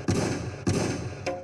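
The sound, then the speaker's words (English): Three gunshot sound effects fire at a steady pace, each a sharp loud crack followed by a booming low rumble; the third shot is shorter and thinner. No one speaks. “Carmelo Anthony, let me give you some gunshots.”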